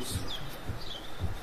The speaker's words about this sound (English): And then you can hear all the bird sounds and the natural river.